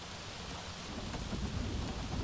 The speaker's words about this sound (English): This storm is right on our tails.